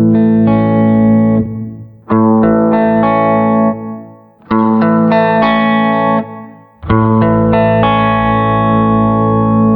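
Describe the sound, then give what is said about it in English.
An Ibanez electric guitar played through four clean custom amp patches on a GT100 processor, without changing pickups: four loud strummed chord passages in a row, each ringing out and fading before the next starts with a slightly different tone. No voices. “Here are 4 clean custom amps I made.”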